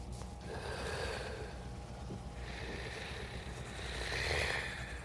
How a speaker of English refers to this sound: It's in the room. Someone has asthma in here.